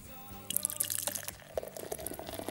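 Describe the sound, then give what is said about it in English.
The studio dog Rex laps Bowser beer, a non-alcoholic beer for dogs, from a bowl, quick wet slurps and drips repeating in an uneven rhythm after a brief quiet start, with no voices. “You can hear the studio dog Rex drinking the Bowser beer.”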